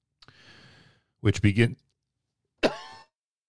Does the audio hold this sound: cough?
yes